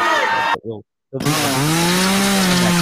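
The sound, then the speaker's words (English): A low, droning engine-like rumble with rich harmonics, cut off by a brief gap of silence, then resuming with a slowly wavering pitch like a chainsaw played at reduced speed. “There was that a slow chainsaw, you fucking idiot.”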